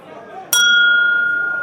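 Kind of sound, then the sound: household object, glasses clinking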